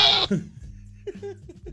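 A male goat lets out a series of loud, nasal bleats, starting with a harsh burst and followed by a few shorter, wavering calls.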